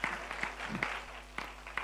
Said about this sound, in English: Come on, somebody, give a clap offering. Hallelujah.